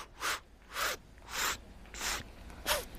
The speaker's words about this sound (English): You see, God breathes into vacuums. Do me a favor, everyone start breathing in.